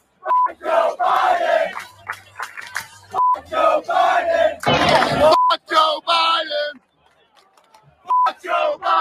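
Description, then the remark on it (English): A large crowd at a rally chants "F Joe Biden" in unison, loud rhythmic shouted phrases repeating over and over, with a brief burst of cheering noise midway and a bleep tone censoring several of the chants. “Listen to the crowd.”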